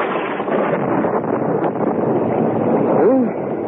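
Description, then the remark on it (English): A bad thunderstorm outdoors with thunder and a steady, loud roar of wind filling the whole stretch, no distinct breaks, and a brief wavering tone rising and falling near the end. “Listen to that thunder. Bad storm.”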